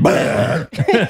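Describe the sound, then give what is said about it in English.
A loud, drawn-out burp rumbles for over half a second, then breaks off into a short pause and a few brief voiced sounds. “Well, at least, yo, you know what's coming out of this episode, don't you? The belch of truth.”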